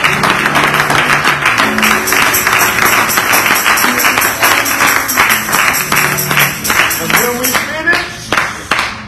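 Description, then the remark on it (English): An audience claps hands in praise during prayer in a steady, brisk rhythm, the sharp claps loud and continuous, with voices murmuring and calling out underneath before the clapping thins out at the end. “We clap our hands.”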